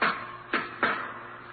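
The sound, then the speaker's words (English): Three knocks on the locked wooden door of a jury room, a single rap followed after a pause by two quicker ones, each with a short resonant ring, fairly loud with no voices. “Then a knock on the locked door of the jury room.”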